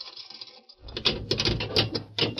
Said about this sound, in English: Scar Durgee entered the jail with Judge Craig. They spoke a few words to the guard, and then Murph unlocked the grill door of the cell.